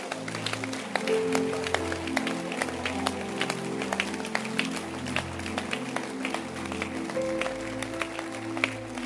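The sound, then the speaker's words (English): An audience claps their hands in a steady, scattered patter of sharp claps that carries on throughout, over a low sustained hum of tones underneath. “Can you clap your hands?”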